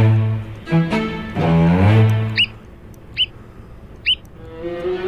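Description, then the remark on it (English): An American oystercatcher, a large, boldly patterned shorebird with a black head, calls: three sharp, high piping whistles spaced about a second apart, clear, following a brief lower, rougher stretch of sound at the start. “The American Oyster Catcher is a large, boldly patterned shorebird with a black head”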